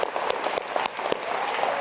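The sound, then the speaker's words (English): A church audience claps steadily to give praise and glory to God, many hands producing a dense, continuous patter of applause with occasional sharper individual claps standing out, and no voices heard. “One, two, three, give him praise and glory.”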